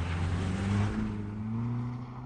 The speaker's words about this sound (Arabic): جاء المحققون بمعلومات تؤكد أن الفقيه بعد أن تخلص من جلبابه الأبيض ولبس بذلة أنيقة ركب سيارة فاخرة تم تسجيل أرقامها وتوجه إلى الدار البيضاء.